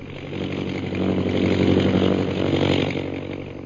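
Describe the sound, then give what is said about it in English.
A propeller airplane flying high overhead toward a pass into the northwest above jungle, its engine droning steadily, a buzzing, harmonic hum that swells louder in the middle and eases slightly toward the end, with no voices. “High overhead, an airplane bearing Myra Trent flies into the northwest, and Myra, glasses in hand, searches the jungles beneath her.”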